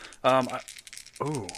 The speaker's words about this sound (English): I'm going to do it like this. I need to figure out where to put this dice tray in correspondence with my mic so I don't bump it while I'm rolling.